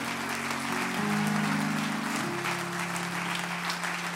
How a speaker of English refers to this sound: Why don't you give the Lord one more great hand clap of praise?